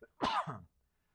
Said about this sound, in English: Excuse me. If this was recorded, I would edit out my sneezes.